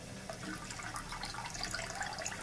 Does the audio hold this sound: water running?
yes